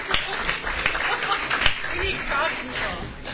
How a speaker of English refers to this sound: Lastly, let's give a big round of applause to the library staff for setting up this beautiful event.